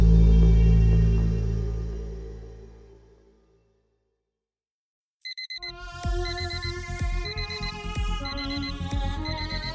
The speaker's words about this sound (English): Oi, would you turn this bloody alarm off? What is this?